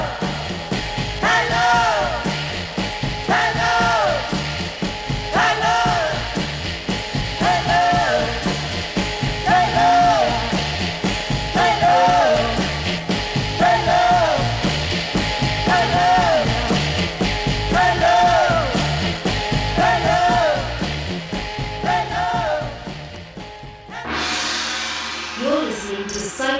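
A band plays a song at steady volume, with a repeating melodic phrase over full, dense instrumentation and a driving rhythm. It cuts off near the end into a brief, different sound.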